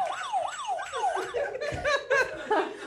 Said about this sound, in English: You danced to police sirens, you fucking narc.